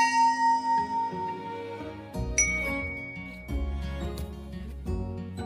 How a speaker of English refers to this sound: The fog makes everything disappear. A bell must be rung to warn the ships. Clang! Clang! Clang!